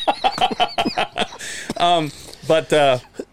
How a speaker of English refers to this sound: dude, my lungs. Oh, dude. A little bit of a cough. Damn. It's probably Rona.